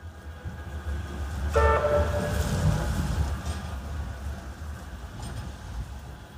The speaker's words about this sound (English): The rumble of traffic, the hiss of buses, the toot of a tram when someone hasn't noticed they're about to be run over.